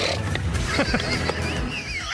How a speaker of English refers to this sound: They had him on a tight live camera shot, and when they got done talking, they zoomed in on Tiger, and he just hawked up a big loogie, just spit.